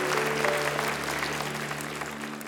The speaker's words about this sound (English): Can we give those who raised their hand a great clap of encouragement? So good.